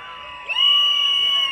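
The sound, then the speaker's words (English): A shrill whistle swoops upward and then holds a long, steady high pitch, blaring over a wash of crowd noise and cheering that rises in loudness as it starts; the crowd is making noise and blowing whistles in answer to a call for those not from the Caribbean. “If you're not from the Caribbean, make some noise.”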